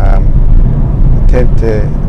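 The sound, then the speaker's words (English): A steady, loud low rumble of an automatic Ford Focus's engine and road noise from inside the cabin while driving, constant throughout, with a few brief bursts of a voice over it. The car has done 54,000 miles. “Seems very smooth and quiet compared to the previous Focus I had. That's the thing you tend to find when you get an automatic.”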